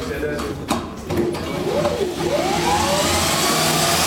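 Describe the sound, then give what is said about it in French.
A power drill spins a washing machine motor, used to show how the motor makes electric current for a wind turbine; it whirs up with a rising whine and builds into a loud, steady mechanical roar after a few short clicks. “J'ai une drill, tiens les formes”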